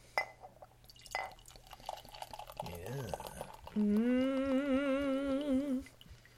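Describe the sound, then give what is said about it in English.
A 5% ABV session ale pours into a glass, a steady ringing gurgle that rises slightly in pitch as it fills for about two seconds, after a few clinks and handling noises. “And le pour.”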